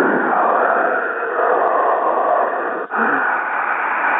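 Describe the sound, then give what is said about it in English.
A steady, breathy hiss from a damaged lung, an Agent Orange lung picked up in Vietnam, continuous and fairly loud for about four seconds, with one brief catch near the end. No talking. “Sir, what is that hissing noise? That's my Agent Orange lung.”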